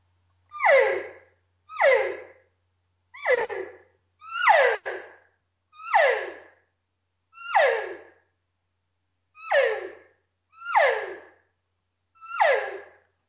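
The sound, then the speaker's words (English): A series of about nine nasal, descending elk cow calls blown on a game call, each a short whiny mew spaced roughly a second apart, clear with no talking. “This is what it would sound like just doing what I would refer to as just a standard nasally cow call.”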